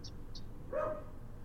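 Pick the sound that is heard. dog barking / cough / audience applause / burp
dog barking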